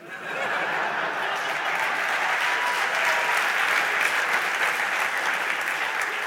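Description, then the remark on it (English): A crowd applauds steadily for several seconds, the dense clapping holding an even, fairly loud level throughout, with a few faint chuckles mixed in. “Well, it's nice to hear you clap, ladies and gentlemen.”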